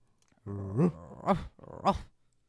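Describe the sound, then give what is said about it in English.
A boxer dog lets out three loud vocalizations, each a low rumbling growl that rises into a sharp bark, spaced about half a second apart with no talking. “It's fun to bark sometimes. Cute-ass boxer.”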